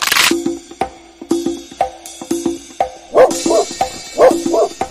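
A dog barks repeatedly in short, loud bursts, the barks coming in an uneven rhythm over several seconds with a few clicks scattered between them.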